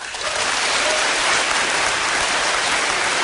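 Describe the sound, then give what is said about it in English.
A crowd bursts into steady applause, many hands clapping at once in a dense, continuous patter that stays loud and even for a few seconds with no voices over it. “So, you applaud when you think... For the one that you think is the fake.”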